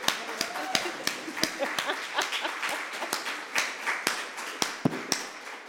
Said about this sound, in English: You can clap.